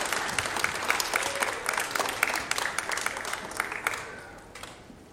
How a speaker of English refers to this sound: If you could please give them a round of applause for their hard work.